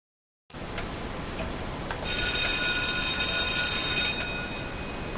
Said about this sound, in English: You heard the bell. It is time for our message, my friends.